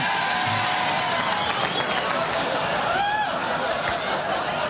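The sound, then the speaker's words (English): A large crowd at a campaign event at a Hilton in Iowa cheers and whoops loudly and continuously at a reference to economists Friedrich Hayek and Ludwig von Mises, dense roaring noise with scattered shouts, whistles and applause mixed in throughout. “Did an entire audience at an Iowa Hilton just cheer a reference to Austrian anti-inflation economist Friedrich Hayek and Ludwig von Mises?”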